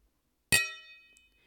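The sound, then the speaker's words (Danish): Glasses clink together once in a toast to the year 2021, a bright strike followed by a clear ringing tone that fades over about a second, with a tiny tick near the end and no voices. “Skål, og må 2021 blive bedre end 2020.”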